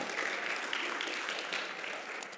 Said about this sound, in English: We can give her a round of applause.